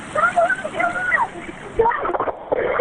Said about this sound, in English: Pottinger Creek winds through Nelson County, flowing under Dehad Road on a dry day. But on a rainy day, the water flows over the road. That creek rises really rapidly.